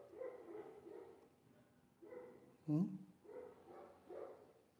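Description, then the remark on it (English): A single dog bark rings out from somewhere down below, midway, standing apart from the quieter murmuring voices of people conversing that carry on before and after it. “Here we are conversating and the dog barks down there.”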